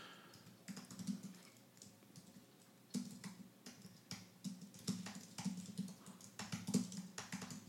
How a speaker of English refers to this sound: I know some of you guys are impressed with my typing skills too, by the way.